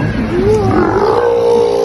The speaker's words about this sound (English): It sounded like they hired Barney from The Simpsons to do his belch, but like an extended belch. Okay. So this is what they sound like, sea lions at the Vancouver Aquarium. Doesn't sound real.